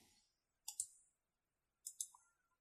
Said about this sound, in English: So how it works is I'm typing this down now so I can check it out later.